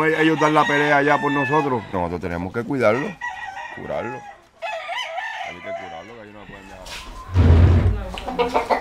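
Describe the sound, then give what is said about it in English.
Several fighting roosters, kept lined up in rows in a backyard, crow loudly, their long wavering calls overlapping, followed by scattered clucking and a sudden rough burst of noise near the end. “If the roosters have injuries from their fights, they tend to their wounds.”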